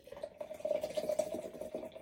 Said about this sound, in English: And then I'm going to do a hard pour. I'm going to turn it straight upside down, straight into the glass. And hopefully we will get that lovely cascading look. Here we go. There it is. Hear that. Here we go, hard pour, straight in.